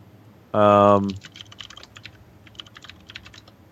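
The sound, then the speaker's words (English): A brief loud voiced sound opens, then rapid, irregular clicks of typing on a computer keyboard continue for a few seconds, light and crisp against a quiet background. “Typing is so loud.”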